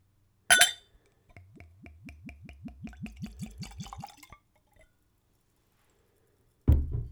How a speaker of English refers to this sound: As with all spirits on this podcast, I taste them neat, and I'm using a clean Glencairn glass. So let's give it a pour.